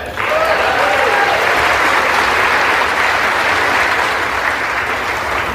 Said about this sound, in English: And please now clap. We need to finish strong for the American people.